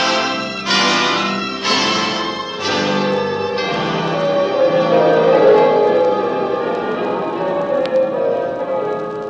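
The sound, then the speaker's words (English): Church bells in Paris peal loudly, struck about once a second at first, their overlapping tones blending into a dense, sustained ringing that carries on without any voices. “Bells of Paris.”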